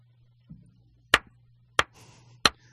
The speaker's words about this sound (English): Stop doing that. Don't clap your hands.